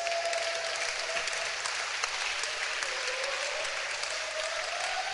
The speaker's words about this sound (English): Clap your hands for your pastor.